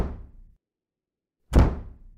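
A house's front door, come open, bangs twice in the wind on a snowy night, heavy wooden thuds about a second and a half apart, the second louder and sharper, each with a short booming decay and no voices.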